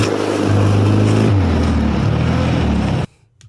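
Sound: car driving at speed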